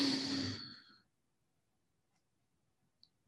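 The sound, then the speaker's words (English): During a guided breathing exercise, a single deep, airy breath is drawn in through the nose, filling the lungs, for about a second, followed by quiet and a faint click near the end. “Once more, breathing in, filling our lungs.”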